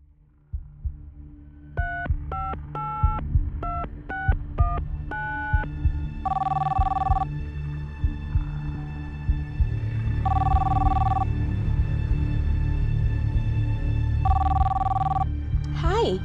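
A quick run of electronic dialing beeps, followed by a telephone ringing three times in steady, evenly spaced bursts over a low, rumbling background murmur.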